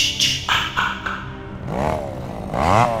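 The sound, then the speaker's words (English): A chainsaw engine revs loudly in two rising-and-falling surges, its buzzing whine climbing in pitch each time, after a few short clattering bursts at the start. “Look, if you have to use the chainsaw on me, can you at least wait a few minutes?”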